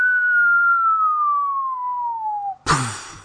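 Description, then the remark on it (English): A cartoon falling whistle: one steady tone that slowly slides downward in pitch for about two and a half seconds, then cuts off into a sudden loud crash of impact. “And you can probably hear the noise like when Wile E. Coyote falls.”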